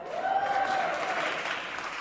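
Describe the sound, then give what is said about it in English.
A steady burst of audience applause, dense clapping that holds at an even, moderately loud level throughout, with a faint sustained tone running through the first half. “Always she goes for the cheap applause.”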